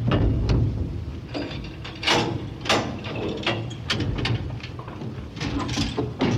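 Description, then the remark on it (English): Mechanical sliding and rattling of elevator doors closing, with repeated clanks and a steady grinding rumble of elevator machinery throughout, loud with no voices. “Please stand clear of the closing door.”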